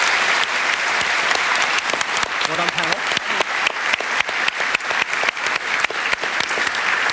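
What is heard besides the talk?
audience applause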